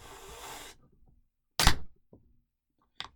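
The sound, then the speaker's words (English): A can of India Pale Ale being opened: a soft fizzing hiss, a short pause, then a sharp, loud crack and hiss, followed by a few light clicks and another brief burst. No one speaks. “You hear the bubbles? I did. I hope the mic picked that up, because that was really refreshing.”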